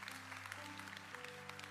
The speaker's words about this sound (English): Our summer interns, this is their last Sunday. We've had some incredible, incredible interns this summer. And I tell you, would you give all of them a huge round of applause?